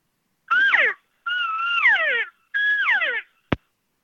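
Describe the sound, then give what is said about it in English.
Three whiny elk cow mews, given as calls to elk to sound like a lost cow, each a nasal, wavering tone that holds steady and then slides down in pitch, with short pauses between and a sharp click right after. “That's when I'll literally give them a couple cow mews, and especially like more whiny one, like you're lost, something like that.”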